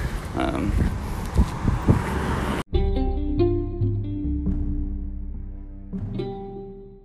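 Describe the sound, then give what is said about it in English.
Loud wind buffets the microphone outdoors on a hot day while traffic rumbles past for a couple of seconds, then the scene cuts abruptly to a calmer indoor space inside the Hyatt, with steady tonal sounds. “It was very windy out there and hot.”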